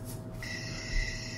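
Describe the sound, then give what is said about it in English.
A 37-minute night field recording: crickets chirr in a steady, high-pitched drone that starts after a brief moment and holds evenly, with other animals in it, over a low background rumble with no voices. “I'm just going to record crickets all night.”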